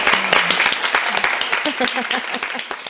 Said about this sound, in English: Should we have another round of applause